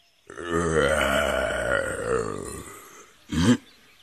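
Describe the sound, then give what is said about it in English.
A lion's loud yawn: a long, drawn-out, throaty groan that swells and slowly sinks in pitch for over two seconds, then one short gruff grunt after a brief pause. “But then, at that moment, the lion suddenly yawned so loudly that the hyena jumped in fear and slinked hastily away.”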